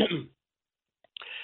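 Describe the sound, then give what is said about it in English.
A short, rough cough or throat-clearing burst, fairly loud, then about a second of dead silence before another harsh, noisy sound starts up. “During my 10 years on the air, cough break. Had to hit my cough button.”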